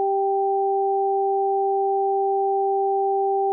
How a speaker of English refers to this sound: The pattern I devised consisted of two tones that were spaced an octave apart and alternated repeatedly. The right ear received the sequence high tone, low tone, high tone